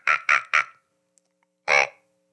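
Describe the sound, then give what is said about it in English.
A voice imitates a raven, giving three quick, harsh croaking caws in a row, then after a short pause one longer, rasping call, fairly loud with silence between. “There are four different sounds from the season that I can reproduce, but there are plenty of them.”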